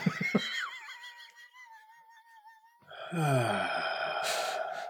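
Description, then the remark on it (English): Loud, exaggerated breathing during a yoga session: a thin whistling, wheezy inhale that wavers for a couple of seconds, then a heavy, noisy, groaning exhale. No one speaks. “I didn't tell you to breathe. Excuse me, sir. Stop breathing.”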